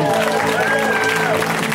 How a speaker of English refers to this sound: A round of applause for Anthony Jeselnik, everybody.